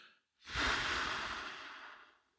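A long, breathy whoosh of air exhaled completely through parted lips as part of a 4-7-8 deep breathing exercise, steady for about two seconds before tapering off, with no talking.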